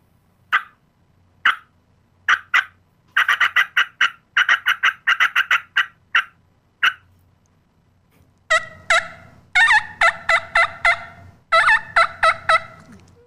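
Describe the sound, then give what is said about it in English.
Cutting on a turkey call: loud, sharp staccato clucks, first spaced out singly, then in quick irregular flurries, turning harsher and slightly squeaky toward the end. No one speaks. “Cut is just kind of little staccato bursts of air, just and I don't know if I'm saying anything, I guess, but I would say like kind of like a chuck, chuck, chuck, chuck, chuck, chuck.”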